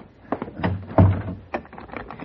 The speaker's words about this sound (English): Come in. Come in and close the door and lock it. Sure.